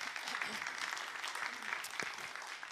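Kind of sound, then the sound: crowd, applause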